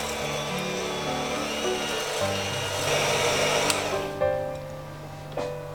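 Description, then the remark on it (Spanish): A hand blender whirs steadily and loudly through thick pastry cream that had been chilled in the fridge, bringing back its texture, its motor pitch dipping and shifting partway through, with a few brief knocks near the end. “Como he tenido la crema pastelera en la nevera, le vamos a volver a dar textura un poquito con la batidora de mano.”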